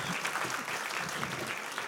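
A crowd claps steadily throughout, a dense, even wash of applause with no pauses and no voices standing out above it.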